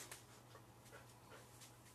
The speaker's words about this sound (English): Oh, my dog's crying.